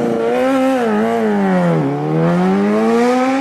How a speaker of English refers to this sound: That's a loud motorcycle. God, I'm enjoying this so much. Just hearing these loud motorcycles. Wow! Where did that one go? What a fucking treat. Jesus Christ. I am having so much goddamn fun listening to these loud goddamn motorcycles.